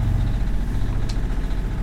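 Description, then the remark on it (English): A sailing boat's engine idles with a steady low rumble and faint mechanical rattle, running continuously with no one speaking. “Engine's on.”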